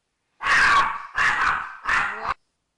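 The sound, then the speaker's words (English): A dog named Minnie barks three times in quick succession, each bark loud, sharp and fairly high-pitched with a slight whiny edge, with no voices over it. “Well, Minnie was screaming right now, but she's trying to protect us.”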